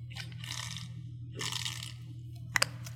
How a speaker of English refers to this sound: It's very hot today, so once in a while I take a little bit of water when I'm talking steady, as I just was.